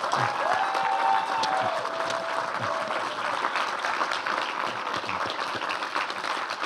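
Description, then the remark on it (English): A crowd applauds steadily as four members of a TV series' creative team, starting with creator Paul Abbott, come on stage, many hands clapping in a dense, sustained wash of sound at an even loudness throughout, with a faint whistle-like tone drifting through early on. “So perhaps we could give them a round of applause as they come on stage.”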